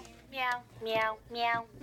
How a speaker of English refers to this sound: That is a meowing piano.